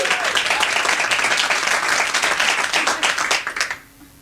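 An audience in Edinburgh applauds steadily for the actors, dense overlapping claps forming a loud, bright wash that holds for about three and a half seconds before quickly thinning and fading out.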